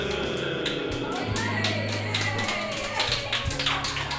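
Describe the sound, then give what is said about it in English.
Steady, sharp hand clapping rings out for several seconds along with excited cheering and screaming, attributed to the host's mother in a basement, over a low sustained musical backing, loud throughout. “Thanks, Mom, for the clapping and the screaming.”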